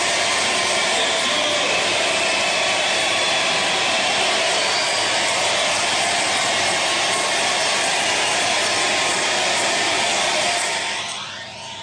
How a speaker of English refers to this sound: they're fired up. This is the Sanders victory party last night. Listen to that crowd.